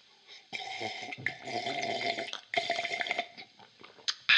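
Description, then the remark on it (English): Loud, wet slurping of hot tea in two long gurgling draws, followed by a quick swallow and a short final slurp. No one speaks. “Tea's a lot noisier than I remembered it being.”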